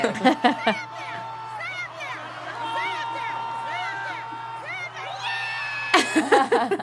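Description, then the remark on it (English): An excited woman screams and cheers at a horse race, her high-pitched shouts rising and falling almost nonstop over the steady roar of a crowd, with louder bursts at the start and end. “Let's just say I was a little bit excited for Mike Smith to that's me screaming.”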